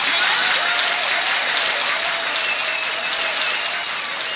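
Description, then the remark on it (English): Sustained applause from a studio audience, a dense, steady wash of many hands clapping at an even, loud level throughout, with no voices standing out. “Yes, that's the applause from all around our listening audience.”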